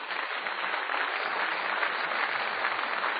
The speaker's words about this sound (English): And I would like to once again ask for a round of applause for our debaters.